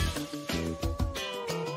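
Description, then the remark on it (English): A kitten meows in short, high, wavering cries that rise and fall over a steady, rhythmic tonal background with no talking. “Meow, thank you.”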